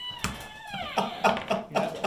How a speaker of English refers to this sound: That was a good door sound. So you go to open the door, and it's like a slight, the door kind of catches a little bit, like on the handle,